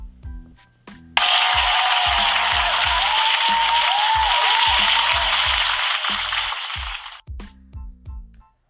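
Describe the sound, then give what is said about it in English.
A loud burst of applause for everyone whose birthday is today swells suddenly and holds steady for about six seconds before cutting off, with a rhythmic low thumping beat running underneath and continuing after the clapping stops. “And round of applause to everybody whose birthday is today and you are here to see it.”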